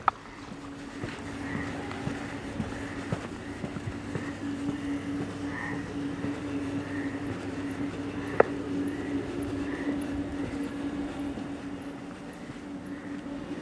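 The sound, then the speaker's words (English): A steady electrical hum drones continuously from an electrical box at night, a low buzzing tone holding level throughout, with faint outdoor ambience and a single sharp click partway through. “Some kind of electrical box.”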